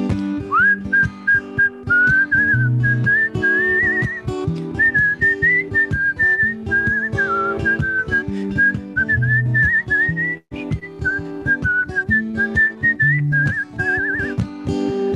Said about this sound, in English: Come on, whistle solo.